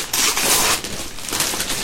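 Wrapping paper being torn off a present of Doctor Who comics: a steady, hissy rustle of ripping and crinkling that swells in a couple of bursts over about two seconds, with no voices.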